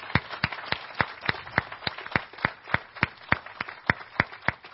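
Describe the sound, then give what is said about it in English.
Audience applause thanking the band members who served in the band, in a steady, even rhythm of sharp claps, about three per second, over a soft wash of background noise, with no one talking. “First of all, let's just, can we just, I know they don't want to be applauded, but can we thank them for being here with us today?”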